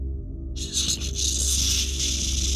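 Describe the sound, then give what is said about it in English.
An eerie, breathy creature hiss, pushed out through the creature's pursed lips, starts abruptly and holds steady, a loud airy rush of sharp high noise that stretches on for about two seconds over a faint low hum. “Its lips purse as a noise that does not belong to our world hisses out.”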